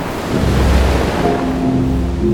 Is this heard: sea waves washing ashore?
yes